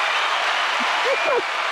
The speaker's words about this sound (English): Round of applause. Yeah, there we go.